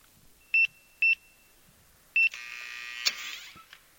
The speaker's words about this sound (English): You enter the code and you hear a click indicate the safe door is unlocked.